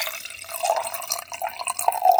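Wine glugs steadily from a bottle into a glass, a continuous burbling pour with bright splashy gurgles that grow slightly louder toward the end. No one speaks.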